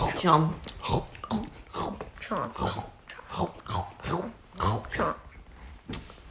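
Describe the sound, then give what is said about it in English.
A voice imitates a crocodile munching a hole through the page of a book, with a steady run of growly, chomping bursts about twice a second, moderately loud. “But look, he's worked out what to do. He's munching a hole through the page.”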